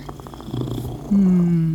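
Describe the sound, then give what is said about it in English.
A domestic house cat purrs, a low pulsing rumble, then a louder, steadier humming tone takes over for the last half second or so. “Yes, I'm glad for domestic house cats too, my sweet snuggle kitty.”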